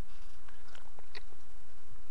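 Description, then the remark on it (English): Mouth sounds of someone sipping Triton Brewery's Ale Pacino, a coffee, chocolate-infused milk brown ale: a few soft, wet slurps and small clicks scattered over about two seconds, with a quiet low hum underneath and no talking. “Oh, that was my first sip ever of this beer.”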